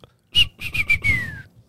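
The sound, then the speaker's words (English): A person imitates a referee's end-of-game whistle with their mouth: a quick series of four shrill whistle blasts, the last one held longer and trailing off, loud. “That's usually how it goes. That's end of game. Yeah. That's the end of game whistle.”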